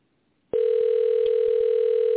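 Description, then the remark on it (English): After a brief moment of quiet, a loud telephone ring from an incoming call not yet put in the screening room cuts in abruptly and holds steady and unbroken to the end, clear, with no voices. “Oh, I forgot to put them in the screening room. It's going to ring.”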